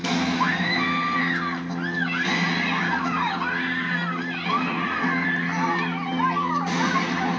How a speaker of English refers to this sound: Girl can scream, can't she?